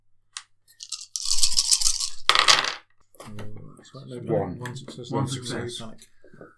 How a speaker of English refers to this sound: We do want to be quiet. So we'll take another stress dice for this roll as well.